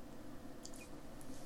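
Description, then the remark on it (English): Someone chewing an Oreo chocolate Easter egg, a few soft, moist squishy mouth sounds over a quiet background with no crunch and no talking. “Not enough crunch in there for me. No, it needs a bit more of the Oreo crunch, but it's still got that Oreo taste.”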